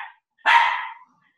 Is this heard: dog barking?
yes